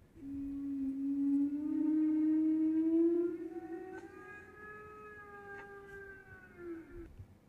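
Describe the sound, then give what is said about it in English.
A pilot whale call, used as the call of the Mosasaurus in the film Fallen Kingdom: one long, drawn-out tonal cry with rich overtones, gliding slowly upward in pitch and holding steady, with a couple of faint clicks partway through and no talking. “And whenever she was off screen or dove or put her tail up out of the water, specifically in the opening scene of Fallen Kingdom, she emitted the call of a pilot whale.”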